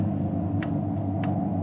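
A clock ticks twice in a steady, even rhythm, each tick short and crisp, over a constant low rumbling hum with no voices.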